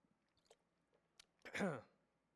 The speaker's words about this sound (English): The quote says, take a sip of water here before I read it.